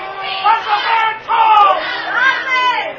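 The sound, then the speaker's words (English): A large stadium crowd at a football game roars in sustained, rising waves of jeering and booing, loud and dense throughout, with no single voice standing out, reacting to a pass interference penalty called against Speakman. “And you can tell how the crowd feels about that.”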